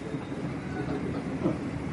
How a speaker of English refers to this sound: And he sent us a train. It usually comes at 12:30. Today came early, as soon as we said his name. Rav Mizrahi gets a fly, I get a train.